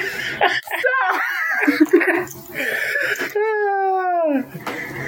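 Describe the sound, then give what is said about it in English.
Bursts of a father's laughter and excited voices lead into his child's long, high-pitched scream held for about a second, then chatter resumes, all loud. “screaming and Dad laughing.”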